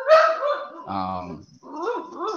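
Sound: dog barking and whimpering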